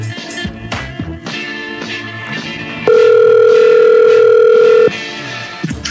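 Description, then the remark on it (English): An outgoing-call telephone tone sounds once: a loud, steady electronic hum lasting about two seconds, rising over busy background music and then cutting off abruptly. “Let's get that phone call in.”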